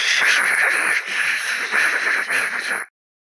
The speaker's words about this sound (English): Everyone else hears static. Coming out of Flint's mouth.